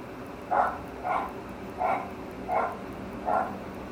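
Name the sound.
dog barking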